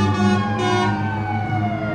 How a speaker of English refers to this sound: Finally, the ambulance